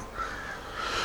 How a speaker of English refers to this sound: I don't like the crow, though.